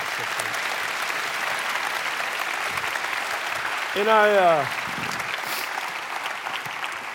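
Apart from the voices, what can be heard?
audience round of applause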